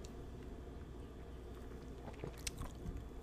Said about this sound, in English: Oh, that kombucha is so like coming back up. Time for another sip, I guess.